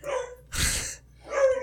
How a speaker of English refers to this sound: Oh, your dog is upset. And, yeah. Hector is mad. But, yeah, they... Oh, Hector wants attention, is what Hector does. He's happily talking.